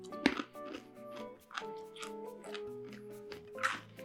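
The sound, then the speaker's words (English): Loud crunching as someone chews a crunchy corn-nut snack mix of corn nuts, green peas, cracker nuts, peanuts and fava beans, with a series of sharp, irregular crunches over a steady tonal background melody and no talking. “Okay, crunchy.”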